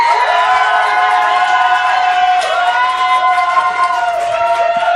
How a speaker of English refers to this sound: please clap and cheer like mad.